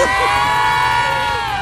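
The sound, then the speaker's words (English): A crowd in Mobile's Crichton community, gathered to look for a reported leprechaun in a tree, cheers and shouts "yay" together in one loud, sustained, high-pitched burst that holds steady and then trails off slightly at the end. “Who else in the leprechaun say yay?”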